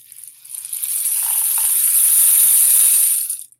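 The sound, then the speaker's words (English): A homemade rain stick covered in colorful Japanese paper with samurai pictures is tilted, releasing a steady, bright rush of pattering beads that swells and holds for about three seconds before stopping abruptly. No one speaks. “But anyway, this is a rain stick that I made.”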